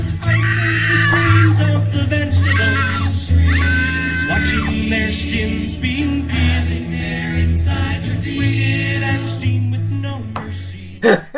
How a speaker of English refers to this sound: Oh, that song cracks me up. I never heard the screams before in the background.